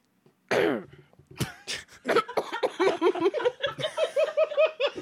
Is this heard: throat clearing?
yes